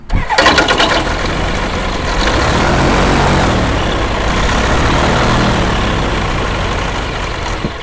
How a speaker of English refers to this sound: So we've got a Rotax 100 horsepower engine behind us with the propeller behind that.